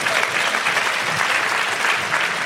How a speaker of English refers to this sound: And I can tell you that we've been married 20 years. And I can also you can give a clap for that.